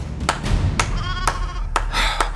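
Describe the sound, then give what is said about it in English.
A young ram with a fresh white coat bleats in a wavering, nasal cry, while several sharp knocking taps punctuate the sound at irregular intervals over a low rumble. “She pepped the ram's fresh white coat, and Peleus began to clap.”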